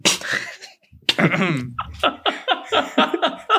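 A short breathy burst gives way to a sharp, explosive sneeze, which is followed by a run of quick, rhythmic bursts of laughter.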